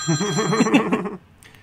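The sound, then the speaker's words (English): A phone rings with an incoming call from John Higgins, a loud, warbling electronic ringtone that trills rapidly for just over a second, then cuts off abruptly into near silence as the call is declined. “It's John Higgins on the phone.”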